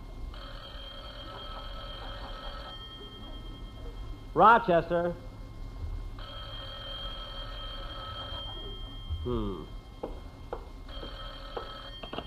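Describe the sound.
An old-fashioned telephone bell rings in three long, steady bursts in the den of Jack Benny's house in Beverly Hills, clear, while a man's voice briefly calls out in the pauses between rings.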